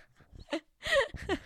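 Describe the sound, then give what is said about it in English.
A dog lets out a few short, high yelping whines, three quick bursts with rising and falling pitch, the middle one longest and loudest. “Oh, wait, there's my dog.”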